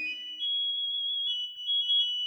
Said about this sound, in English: But you only sing the same thing over and over again. Repetitive bird, take a page from the great classical bird composers throughout history.